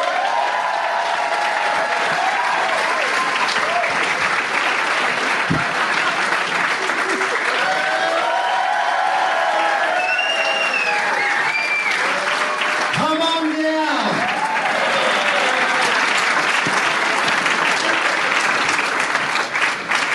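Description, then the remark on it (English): An audience at the Comedy Store applauds loudly and steadily for about twenty seconds to welcome a guest to the stage, a dense wash of clapping with scattered whoops and cheers rising over it and some voices calling out in the mix. “So, ladies and gentlemen, please welcome to the stage our guest,”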